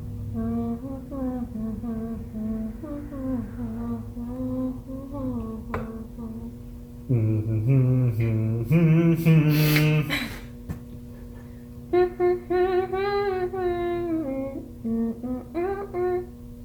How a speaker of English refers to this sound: Hum the first song that you can think of.